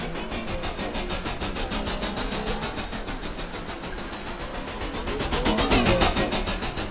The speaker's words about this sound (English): In a futuristic city, Earth, several years ago, Detective Clayton flies over the city in a hover police car.